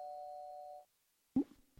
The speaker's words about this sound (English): Well, there's the doorbell.